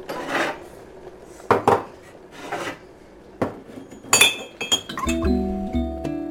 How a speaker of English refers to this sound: Okay, go get me a cup. Why? I need to pour the hot water. I need to pour the hot water. Is it ready? Yeah. I know it's ready because this turned off.